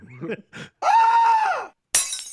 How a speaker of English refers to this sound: Is that a goat screaming? Yeah. That's not like a screaming goat, doesn't it? Shit. Yeah, it does.